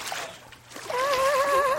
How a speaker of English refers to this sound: I'm in the bathroom. I'm bathing in toilet water. I'm bathing.